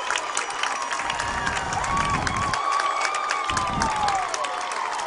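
A football crowd at Etowah cheers and shouts continuously in the final seconds of Fort Payne's 33-27 win, a sustained roar of many voices with whistles and scattered yells rising over a dense, steady wash of noise.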